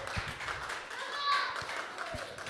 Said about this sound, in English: Can we stand? And the music team, can we give them a round of applause as they come up?